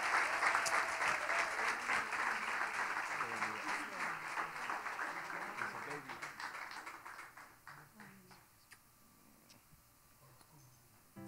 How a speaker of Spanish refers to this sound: Démosles un fuerte aplauso.